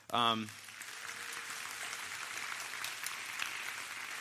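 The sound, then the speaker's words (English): An audience breaks into steady, sustained clapping that fills the room for several seconds, following a brief voice at the very start. “You guys are just going to start clapping.”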